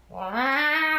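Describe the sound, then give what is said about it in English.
A person imitates the loud yowling meow of a black neighbor cat known for meowing very loudly, usually around 10 o'clock at night: one drawn-out, rising wail that swells and holds strong for about a second, on its own with no other talk. “neighbor cat, who is black, and apparently is notorious for meowing very loudly.”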